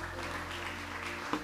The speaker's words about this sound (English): Oh, your clapping is...